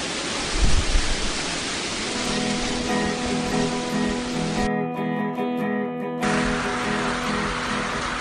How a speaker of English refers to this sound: just stepped outside so you can hear the roar. I don't know if you'll be able to pick up the distant roar in amongst the wind. It sounds like there's a train coming. It's nuts. It seriously is.